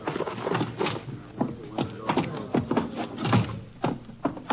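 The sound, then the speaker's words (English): A door opens amid a busy stretch of shuffling footsteps and dull knocks, fairly loud, as people carry a heavy body in through the doorway; no one speaks. “I'll get the door for you.”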